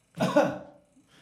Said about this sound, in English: Right. I'll cough whenever you do it.